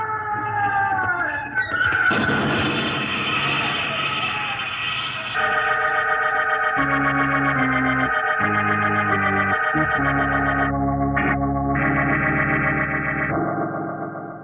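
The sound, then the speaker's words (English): A passing train, with a police constable pushed before it, roars by for about fourteen seconds, loud and steady, with a low rumble under sustained, shifting horn-like tones that sound heavily processed. No one speaks. “The poor constable was pushed before the passing train, and his body was crushed.”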